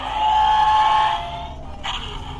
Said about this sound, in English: Picked up a sound effects Star Wars book, as you can hear. Little force lightning, little wampa. Wampa, you want to hear the wampa? Oh no. How about some hyperspace?